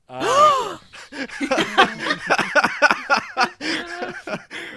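A loud, pitched gasp sound effect bursts out at the start, its tone swooping up and down, followed by several seconds of busy, overlapping voiced sounds.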